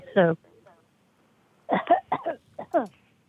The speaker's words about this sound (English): She coughed and then came in.